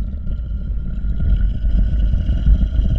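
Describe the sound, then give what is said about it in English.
A low, repulsive, monstrous growl from a creature at least 8 feet tall with glowing red eyes rumbles steadily for about three seconds, deep and gritty with a rough, wavering texture, fairly loud and with no voices over it. “I then heard a low, repulsive growling.”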